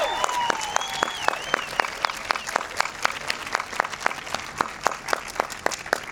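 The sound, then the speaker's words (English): An audience applauds the storytellers at a storytelling event, clapping steadily and loudly throughout, many hands blending into a dense patter, with a few whistles and cheers rising over the applause near the start. “First of all, let's have a round of applause for all the storytellers because you are all amazing.”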